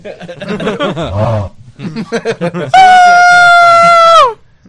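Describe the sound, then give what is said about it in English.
After a few seconds of chatter and snickering, a piercing, high-pitched scream erupts and holds steady for about a second and a half before cutting off sharply. “What the fuck was that? That was … screams”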